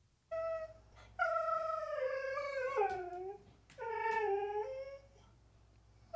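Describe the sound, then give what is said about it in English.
A dog named Mac whines for treats in three long, wavering, high-pitched bursts with sliding pitch, fairly loud, with brief pauses between them and a low steady hum underneath. “This is a Judgies listener submitted sound, and this is my dog making some funny noises because he wants some treats.”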